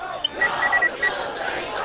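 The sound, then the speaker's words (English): A large, angry crowd on Chromius roars and shouts continuously and loudly, with a few sharper yells standing out from the dense mass of voices, as it gets out of control and begins to storm the administration. “This crowd is getting out of control. They're beginning to storm the administration.”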